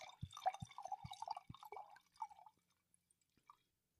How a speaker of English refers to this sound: You gave me a much bigger pour than you gave yourself.